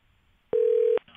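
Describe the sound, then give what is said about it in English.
A single steady electronic telephone tone sounds for about half a second as a phone call is placed to a news desk, sharp clicks at its start and end, loud with no one talking, then faint line noise. “Well, let's get him on the phone again. Let's try again.”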